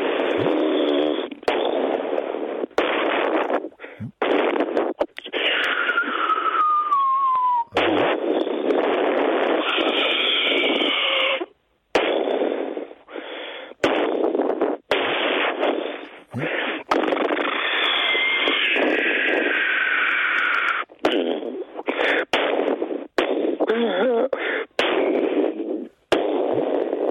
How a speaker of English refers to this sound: It sounds like bombs mixed with farts.